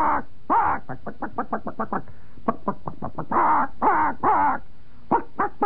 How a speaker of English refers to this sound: That means, where the hell is the corn? It's 5 minutes late. That's what that chicken is saying.